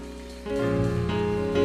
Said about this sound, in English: And if you believe he's mighty, why don't you just clap your hands to him one more time?